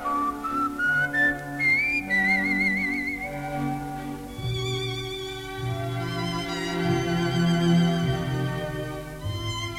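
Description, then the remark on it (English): Tenor Fritz Wunderlich whistles a lilting, vibrato-laden melody, The Wistful Lover from Leo Fall's operetta Die Rose von Stambul, over lush orchestral accompaniment, the clear whistled line rising and gliding above the strings at a moderate, steady volume. “Fritz Wunderlich singing and whistling The Wistful Lover in Leo Fall's operetta Die Rose von Stambul.”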